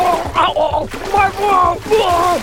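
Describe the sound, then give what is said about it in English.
Water splashes and sloshes in uneven bursts beneath a strained voice crying out continuously, fairly loud, as Leopard Cat thrashes and drowns in the sea after a big wave overturned his light float. “Leopard Cat is drowning!”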